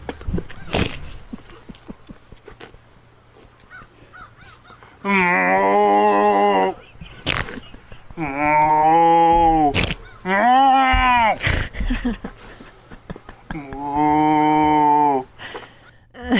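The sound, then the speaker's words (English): A man imitates a cow, letting out four long, drawn-out moos in a row, loud, separated by brief pauses, with faint tapping and knocking sounds in the background. “Okay, guys, we're going to do a guy acting like a cow.”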